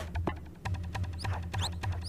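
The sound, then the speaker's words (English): Shrill, rapid sneaker squeaks chirp repeatedly, like shoes on a basketball court in a video game, over a low, steadily pulsing thud. No one speaks. “And then once the game begins, it's incessant cricket sounds, like the feet squeaking on the seat.”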